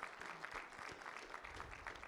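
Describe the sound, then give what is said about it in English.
A church audience claps steadily as a clap offering to the Lord for those who finished the worship class, a dense, continuous patter of many hands with no pauses, moderately loud, sustained through the whole moment. “Let's give the Lord a clap offering for everybody who finished the worship class.”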